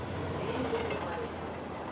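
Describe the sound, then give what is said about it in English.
Subway trains rumble by in a subway station in the Soviet Union, in a steady, unbroken roar, a low hum running beneath a broad wash of hiss for the whole two seconds. “There, as the trains rumbled by, Clara and Leon sat side by side, holding hands, talking about their lives.”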